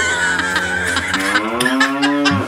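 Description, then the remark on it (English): A person imitates a cow's moo with one long, loud, sustained lowing call that rises slightly in pitch and then drops off, with no other talking. “I have a cow and a woodpecker.”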